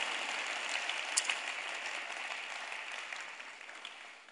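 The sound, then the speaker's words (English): An audience breaks into steady applause for the lay ministry, many hands clapping together in a dense, even wash that holds strong and then gradually tapers off toward the end, with no voices over it. “Clap for the lay ministry and what a lay person can do for God.”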